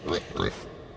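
Two quick, nasal pig oinks in a row, fairly loud, each a short grunting burst followed by a brief silence.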